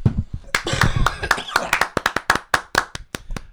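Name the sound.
audience clapping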